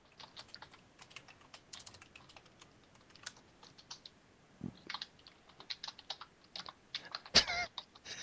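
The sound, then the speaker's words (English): Rapid, irregular clicking of keys on a computer keyboard as players type, fairly quiet, with a few louder thumps near the end; no one speaks. “as the players are typing about the latest splurge of the Twilight franchise”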